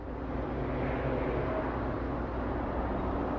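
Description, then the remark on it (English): A steady, unbroken engine rumble and road noise of a car cruising at a constant speed down a street in a remote part of town, evenly loud with no voices. “As we return to our story, Blackie and Janet are in Blackie's car driving down the street in a remote part of town.”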